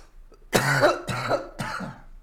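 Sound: cough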